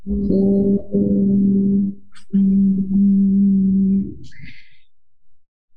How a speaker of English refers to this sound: So pressing the head into the hands and resisting with the hands and humming on the exhalation, right? And slowly release tension. So inhale, then with humming sound, release hands.